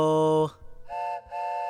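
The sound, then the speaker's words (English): The small whistle of a child-sized toy train sounds a steady, reedy blast, then two shorter, higher-pitched toots separated by a brief gap. “I squinted my eyes and could make out a child-sized train snaking along the ground ahead of us, twisting and turning before hooking around a corner and choo-chooing away.”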